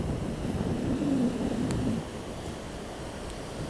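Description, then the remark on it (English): A dense, steady hiss of heavy rain mixed with the low rumbling wash of surf, fuller for the first two seconds before easing slightly, with no one speaking. “Now it's raining quite hard right now.”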